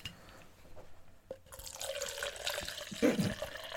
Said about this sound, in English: just poured herself some wine. Can you pour me some?